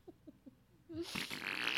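A few quick, soft sputtering puffs give way to a longer, louder, raspy fart that fills the rest of the moment, unmistakably crude.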